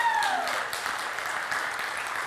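A crowd applauds in a steady, dense wash of clapping that holds an even loudness throughout, with a brief falling whistle-like tone at the very start.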